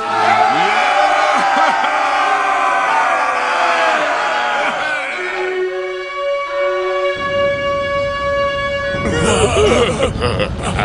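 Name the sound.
crowd shouting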